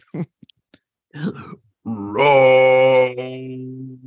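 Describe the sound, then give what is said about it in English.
A person imitates a roar with a long, loud, low-pitched voiced growl held steady for about two seconds. A few short breathy huffs and mutters come before it. “How many times have we roared?”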